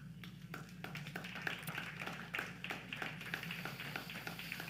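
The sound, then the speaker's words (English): An audience applauds steadily, many hands clapping in a dense, even patter of sharp taps that holds at a constant moderate level for the whole stretch, with no voices. “And I join you in that applause, but let us also say we clap and we applaud it, but we need to like embrace it and seek to live in it.”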